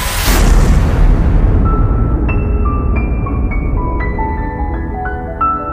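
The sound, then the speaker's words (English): A sound effect of a huge, booming explosion that erupts and fades into a deep, sustained rumble, while bright shimmering tones chime in over the dying roar; no one speaks. “They evaporate away at an increasing rate until they vanish in a gigantic explosion.”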